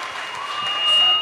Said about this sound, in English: Give it up for Katori Walker one more time, please.